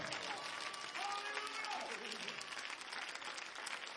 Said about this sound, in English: Come on, clap your hands and give the Lord praise here today.